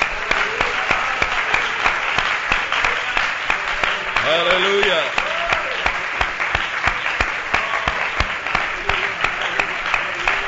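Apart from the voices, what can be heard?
audience hand clapping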